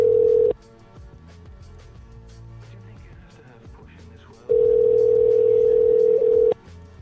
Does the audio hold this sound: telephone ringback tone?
yes